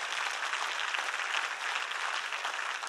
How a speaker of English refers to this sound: Can I have an amen to that? Can I have a hand clap for that? Jesus is Lord.